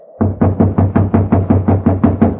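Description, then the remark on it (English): Someone pounds on a locked door in a fast, steady run of about a dozen heavy, loud knocks, trying to wake the person inside, with no voices. “You'll just have to keep knocking till he wakes up.”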